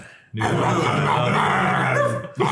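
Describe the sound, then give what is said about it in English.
A dog lets out a loud, drawn-out growling bark in a studio, holding it for about two seconds before a second one begins right after a brief pause. “Scrabbles is the dog.”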